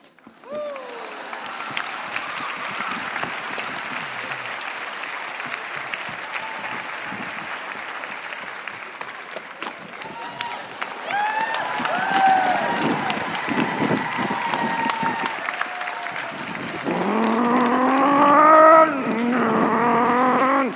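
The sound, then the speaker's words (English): A large crowd applauds steadily and loudly for about twenty seconds as a speaker turns around a sign, with scattered cheers building into excited whoops and shouting toward the end. “Singles, this sign, I'm going to turn around, is so important that I want you to just to go crazy when I turn it around. I want you to clap.”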